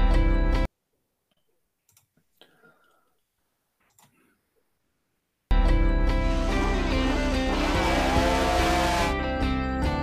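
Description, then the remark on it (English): A brief burst of roaring engine noise cuts off into near silence with faint clicks, then loud racing motorbike engines roar, revving and whining past for several seconds. “Now, he died in Estonia doing exactly what he loved doing, riding motorbikes.”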